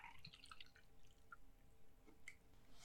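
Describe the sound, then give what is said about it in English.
The next standard drink is poured into a glass, heard as a quiet run of bright liquid splashes and drips over about three seconds, with no talking. “I'm pouring my next standard or my next unit.”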